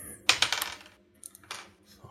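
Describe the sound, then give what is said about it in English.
Dice clatter and skitter across a table in a quick burst, then a second brief rattle follows a moment later, fairly loud, with no one talking. “Oh, my dice are going everywhere.”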